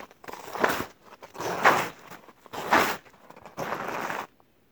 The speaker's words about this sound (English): I have not had a chance to test this, so I hope that the sound of snow crunching under my feet is not too overbearing.